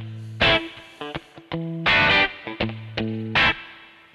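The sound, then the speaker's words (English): An electric guitar plays alone through a spring reverb: sharp strummed chord bursts alternate with short plucked notes, each leaving a bright, splashy reverb tail that rings on between hits. “That stuff, and of course a spring reverb.”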